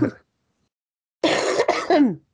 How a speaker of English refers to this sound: Long COVID, not a joke. Ooh. Oh, I'm sorry. It's still just a weird cough that I can't get over. It scares people out of the aisles at the grocery store still.